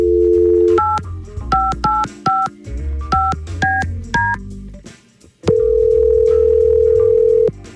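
A steady dial tone gives way to a quick run of about ten touch-tone dialing beeps, each a short paired-pitch tone, followed by a long, loud single ringback-style tone. No voices.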